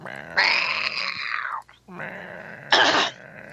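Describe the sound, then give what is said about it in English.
A person imitates a smoker's cat meow in a raspy, gravelly voice: two drawn-out, croaky calls, each starting with a harsh, breathy burst. “For a second there, I thought you was going to do a smoker's meow.”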